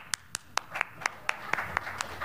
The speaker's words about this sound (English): That was a joke clap. You all fell for it.